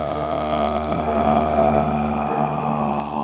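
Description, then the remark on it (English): A voice imitates a zombie groan: one long, steady, raspy moan with a low buzzing pitch. It stays loud and unbroken for about three seconds, with no words spoken. “That's pretty active for a zombie”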